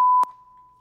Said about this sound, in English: That's getting cut. Yeah. We're going to put a beep over that.